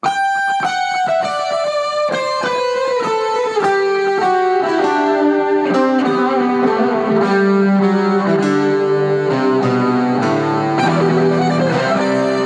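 A loud, effects-laden electric guitar plays the Christmas carol Joy to the World as a rock instrumental, a stepwise descending melody with sustained notes ringing over a full, steady backing with no voices.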